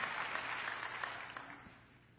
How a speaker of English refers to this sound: And that's worth a hand clap of praise this morning to the Lord God who gave his all so that we could have access to all of him.